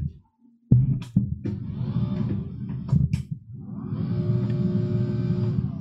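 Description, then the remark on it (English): A motorized automatic standing desk moving: a steady electric motor hum with a low droning whine, starting abruptly after a brief quiet moment, punctuated by a few clicks and thumps, then settling into a continuous mechanical drone. “I got a moving whatever automatic standing.”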